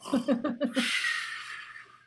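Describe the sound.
A person imitates snoring: a quick run of about five throaty, rattling snorts, then a long, breathy exhale that fades out.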